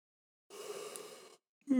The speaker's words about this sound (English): Are you yawning right now? Yeah. You're going to edit that out, though, right?